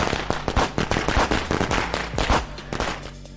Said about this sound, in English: I took a pack of firecrackers from my pocket with it. And with the fuse sizzling, I threw it at them. 20 wild pops echoed down the street.